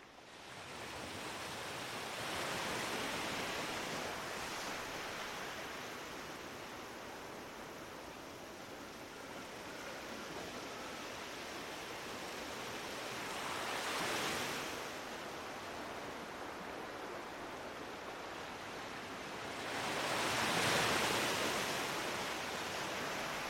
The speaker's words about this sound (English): I now have this tool that I can turn to, which is the sound of the ocean.